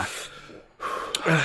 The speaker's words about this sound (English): But, my nose is streaming. My breathing is kind of erratic.